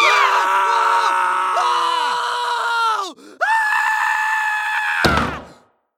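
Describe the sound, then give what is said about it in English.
Loud, drawn-out screams from several people overlap in long sustained wails, briefly break off, then resume before cutting out in a harsh, abrupt burst at the end, heard in the Scream Center at Lost Signal Studio, where screams are collected for broadcasts. “Almost every show has a scream, and we harvest only the best for our broadcasts.”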